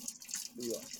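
Running tap water splashes steadily over hands as powdered sugar is washed off, a broad hissing wash with shifting gurgles, fairly faint and continuous for about a second.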